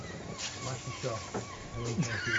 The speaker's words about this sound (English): You hear the seagulls in the back.